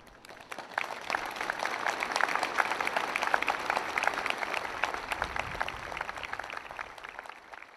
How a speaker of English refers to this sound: And at St Thomas's Hospital, where the Prime Minister himself was treated, the staff and patients stood 2 metres apart, ending their tribute with loud applause.